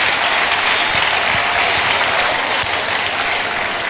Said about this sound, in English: Many places. Clap for yourselves for coming.